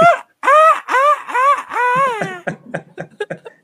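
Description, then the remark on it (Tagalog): A person imitates a bike horn with about five loud, nasal honks in quick succession, each arching up and down in pitch, followed by short choppy vocal bursts. “So far, tapos yung busina mo. Echo edition. Busina mo.”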